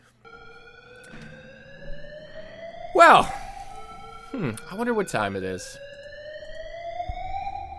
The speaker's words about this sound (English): Well, that alarm bell, a little sound, a little alarmy soundy.